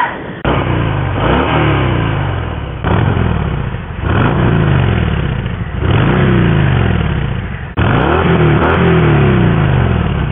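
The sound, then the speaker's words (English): A motorcycle exhaust revs loudly, the engine climbing in pitch four times in a steady rhythm, each rev dropping back to idle before the next. No voices. “I'm going to try and get some audio of the exhaust, because man, she sounds fantastic.”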